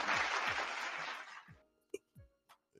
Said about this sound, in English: A round of applause to everybody rocking with it. Round of applause.